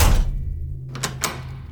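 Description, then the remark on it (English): The door to a room shuts with a dull low thud, followed moments later by two sharp metallic clicks of a lock being turned from the inside, over a faint steady hum. “The door to my room closed, and somebody locked it.”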